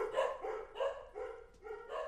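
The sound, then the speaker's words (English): Dogs bark repeatedly at a home studio, a steady run of short, sharp barks, about five in two seconds, moderately loud, with no talking over them. “Our dogs agree also.”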